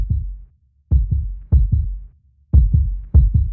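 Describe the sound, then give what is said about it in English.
A fast heartbeat thuds in muffled double beats, lub-dub pairs repeating quickly and steadily with brief gaps between, low and heavy with no voices or other sounds. “My heartbeat is elevated.”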